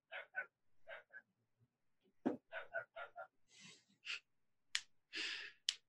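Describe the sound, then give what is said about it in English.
A puppy lets out a run of short, high-pitched yips and little barks into the microphone, broken up by breathy huffs and sigh-like sounds; no one speaks. “Hearing your puppy bark twice.”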